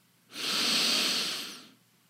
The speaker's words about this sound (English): First, pay attention on filling the belly on the in-breath. Do three of those with me, just breathing in as the main focus.